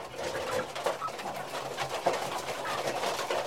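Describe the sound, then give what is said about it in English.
A dense, continuous chorus of dozens of chicks and hens at Mr. Sabali's poultry farm, kept in a small square concrete building, with many overlapping cheeps and clucks at a steady, moderate level and a few slightly louder calls, no voices. “Sabali, there are dozens of chicks and hens. This is Mr. Sabali's poultry farm”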